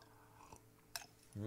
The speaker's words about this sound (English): And I sipped. Oh, yeah. That's a good one. That's the nectar of the gods, baby.